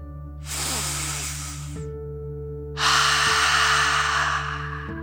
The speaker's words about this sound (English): Breathe in through your nose, filling up your belly, and then out through your mouth, imagining you are breathing fire like a dragon. Ready? Deep breath, in and out.